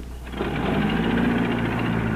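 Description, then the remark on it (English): An old Packard car engine being fired up, swelling in the first half second into a steady, rapid mechanical chugging with a low rumble and a rattly, clattering edge, with no voices. It has started this way since 1937. “Hey, Skid, fire up the old Packard, will you?”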